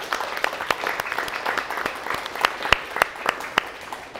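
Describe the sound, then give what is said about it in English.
An audience claps steadily in a sustained round of applause for the people who help plan these events, dense overlapping hand claps with a few sharper, louder claps standing out, no voices heard. “And if I give one more round of applause, it'd be for these guys that help plan these events because they're doing it for free, basically.”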